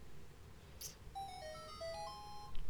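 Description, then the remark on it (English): A mobile phone ringtone plays a short, bright electronic melody of quick stepping notes, clear over a low background hum, with no one talking. “There's my phone. You put that shit on vibrate.”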